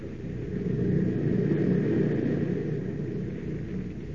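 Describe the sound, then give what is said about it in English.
A steady, low engine drone of an airplane in flight over the wilderness of northern Canada hums continuously, with a faint higher tonal whine riding above the deep rumble and no pauses or voices. “On across the unlimited wilderness of northern Canada, the plane wings its way, carrying not only Perry White and his party, but also the man who has vowed to destroy them.”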